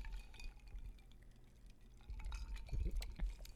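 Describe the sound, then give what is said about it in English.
Sparkling wine pours into a glass, a steady liquid rush with fizzing crackle and faint glassy ticks, swelling louder toward the end with no voices. “Beautiful glass, beautiful pour.”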